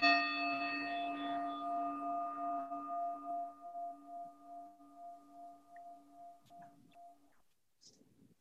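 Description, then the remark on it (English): A meditation bell is struck once over a Zoom call, its low, steady tone and bright overtones humming on alone and fading slowly over about seven seconds before a faint rustle. “I'm only ringing the bell once because I've realized that bells are fairly annoying over Zoom, the way they echo strangely.”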